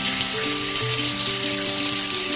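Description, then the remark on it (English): A steady hiss of running shower water pours continuously for a couple of seconds, fairly loud, with faint low sustained tones humming beneath the spray. “turn on the shower for a sec”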